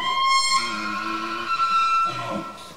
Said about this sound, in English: Edmonton Elks, you like it? Is that a whale? That's the elk sound.